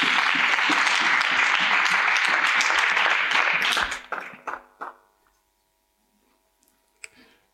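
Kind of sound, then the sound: crowd, audience clapping hands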